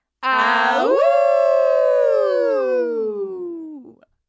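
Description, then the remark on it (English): Hosts imitate wolves, letting out one long, loud howl together that rises sharply, holds, then slowly sinks in pitch over about four seconds before trailing off. “let's howl out.”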